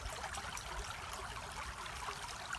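A steady, continuous babble of a countryside forest stream tumbling over small stones and little rocks, heard alone at a soft, even level with a bright, hissing texture and no breaks.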